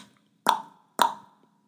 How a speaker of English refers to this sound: They crept nervously up to the door of the big stone castle. The big sister knocked on the door using the jeweled knocker.